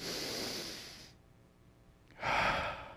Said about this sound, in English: We can start right here. Everybody take a big old deep breath in.